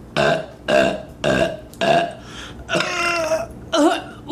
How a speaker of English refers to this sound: See what I mean? Like, she keeps it interesting. She breaks up her review with some burps.